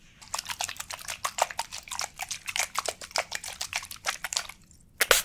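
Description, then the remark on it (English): A spray bottle of fruit-flavored scent spritzes rapidly over and over, a quick run of short, crisp hissing bursts in a steady rhythm, with a brief pause near the end before a final spray. “I want you to tell me what you smell when I spray, okay?”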